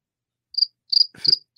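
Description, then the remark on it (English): A cricket chirps three times in quick succession, each a short, shrill trill at an even pace, clear with no voices around it. “The cricket bracket. That one's on me.”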